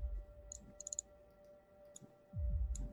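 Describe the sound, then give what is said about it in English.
Soft, sparse keyboard typing: a quick burst of four or five keystrokes, then isolated taps spaced apart, faint over a low background hum and rumble. “So you hear the typing. In fact, you might even think you see a key press on the keyboard, but nobody is sitting there.”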